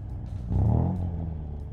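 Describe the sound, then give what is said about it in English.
The engine of a 1964 Lancia Flavia two-door Italian sports car roars on a dark motorway, its deep rumble swelling into a loud revving surge before settling back into a steady drone. No voices. “roared up the dark-lit motorway.”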